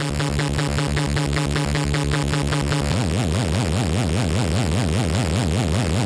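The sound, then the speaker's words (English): A loud, steady buzzing tone with a harsh square-wave edge plays for about three seconds, then switches to a smoother sine-wave tone with a wobbling, warbling character until the end. No voices. “Try and listen with your ears to see when the square wave changes over to the sine wave.”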